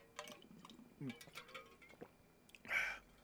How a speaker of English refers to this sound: Water break.